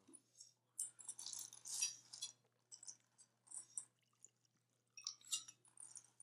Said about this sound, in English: Yeah. Man, this bottle is hard to pour.